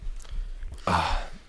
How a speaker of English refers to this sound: No, I just burped orange. Yeah, my stomach is not sitting tight with me.